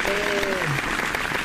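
An audience claps steadily, a dense wash of many hands at fairly even loudness through the whole clip, with a brief tonal hum near the start.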